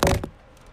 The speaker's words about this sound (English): Hear him knock on wall.